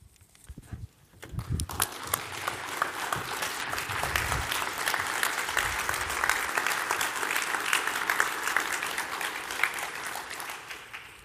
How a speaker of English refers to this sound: My church, we normally hold the clapping till after they've preached, just in case,